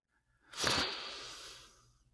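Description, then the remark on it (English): A single long, deep breath drawn in during a guided breathing exercise, an airy rushing hiss that swells quickly and then tapers off over about a second, with no talking. “Take a deep breath in.”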